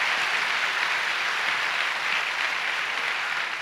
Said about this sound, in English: Come on, give God a big clap. Hallelujah.